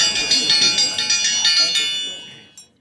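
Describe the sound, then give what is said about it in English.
A bright, high dinner bell rings rapidly and continuously for about two seconds, fairly loud, then fades out, followed by one brief final ding, announcing that the buffet is open. “Dinner bell, activate.”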